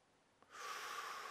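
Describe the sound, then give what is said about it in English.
A single sharp, hissing intake of breath begins abruptly after a faint click and holds steady for nearly a second, fairly quiet, with no talking around it. “Sharp intake of breath by the disciples.”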